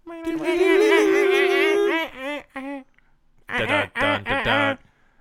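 A loud, nasal duck quack sound effect played from a soundboard button, drawn out for about two seconds, followed by a couple of short ones, then a quick run of three clipped quacks, clear with no talking.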